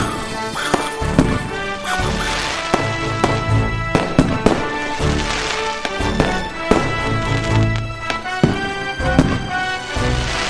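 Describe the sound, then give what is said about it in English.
Dense, continuous fireworks crackle and pop, with rapid sharp bursts and booming thumps layered over one another, loud for the whole stretch with no voices. “Fireworks!”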